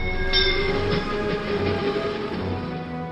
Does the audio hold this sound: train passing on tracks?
yes